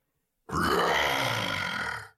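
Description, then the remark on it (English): A human voice imitates a growl as a practice growl: one sustained, rough, throaty roar lasting about a second and a half, loud and gravelly, with a strained rasp that holds steady before cutting off. “Then you open your mouth and let out a practice growl.”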